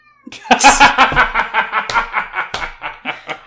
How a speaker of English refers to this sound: That meow is like, get your ass up and open the fucking door. If you'll excuse me, I need to go appease my mistress.